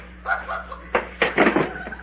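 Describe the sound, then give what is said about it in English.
A door that opens the other way is being opened, with a handful of sharp clunks and rattles from the latch and frame over about a second, over a faint low hum. “Hey, what's wrong with this door here? It opens the other way.”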